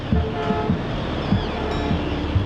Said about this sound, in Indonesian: Jika dibandingkan dengan suasana tengah kota yang syarat akan polusi, lain halnya dengan pantai marina yang berisik dengan deburan ombaknya.